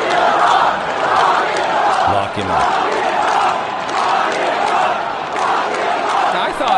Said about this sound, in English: Listen to the crowd reacting when he comes into the stadium.